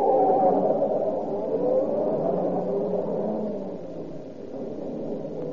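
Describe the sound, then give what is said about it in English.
The engine of a black sedan with one taillight roars steadily, its pitch rising and shifting as it revs and speeds away after hitting boys on the road, fading only slightly toward the end. No one speaks. “They were so close to the side of the cut, I couldn't see them for a little while, and then I heard this car.”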